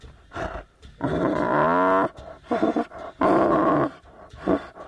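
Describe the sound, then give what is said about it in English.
A tiger at a Buddhist temple refuge for rescued tigers in Thailand growls and roars in several loud bursts, some drawn out and rumbling, separated by brief pauses, with no talking. “For this reason, this temple has become a refuge for tiger cubs rescued from poachers working along the Thai-Burmese border.”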